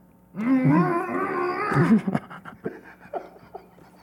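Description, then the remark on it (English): A man's voice imitates a dire wolf's growl, a sustained rumbling snarl lasting over a second, followed by a few short huffing breaths and grunts. Fairly loud, with no other sounds. “The man is a dire wolf.”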